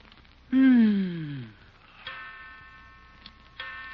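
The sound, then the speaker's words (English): A clock strikes 3 o'clock, three slow, evenly spaced strikes, each ringing chime lingering before the next. The first strike is loudest and the later two are softer, with no voices. “Yeah, I know it's 3 o'clock.”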